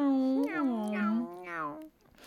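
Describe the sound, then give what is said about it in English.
A person with mouth opened wide softly imitates a dog, making a few gliding whimpering and whining sounds in quick succession before trailing off into quiet. “And opening wide to soft dog noises.”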